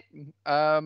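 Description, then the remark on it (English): A voice imitates the bleating cartoon laugh of SpongeBob SquarePants: a short soft burst followed by a louder, quavering, nasal sheep-like bleat, with nothing else around it. “Did he just bear like a sheep?”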